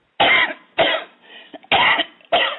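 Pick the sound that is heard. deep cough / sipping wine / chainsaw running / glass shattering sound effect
deep cough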